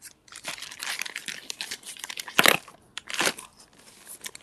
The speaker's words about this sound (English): And that's me closing it. Closing a fake Ziploc bag.